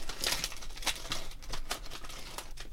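A thick packet of Kettle salted crisps rustles and crinkles in quick, irregular bursts of bright, papery crackle, with sharper crunches scattered through a steady rustling texture and no voices.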